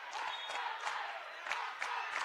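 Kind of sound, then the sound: crowd, sports crowd cheering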